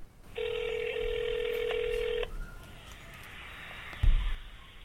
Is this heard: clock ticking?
no